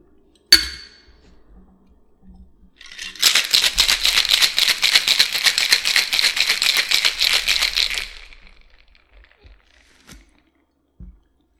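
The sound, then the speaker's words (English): A sharp metallic clap, then about five seconds of vigorous, rhythmic rattling as ice is shaken hard inside a cocktail shaker holding a cocktail with mint simple syrup and lemon juice. The rattling is loud and steady before stopping abruptly. A faint tap follows. “And get ready to shake.”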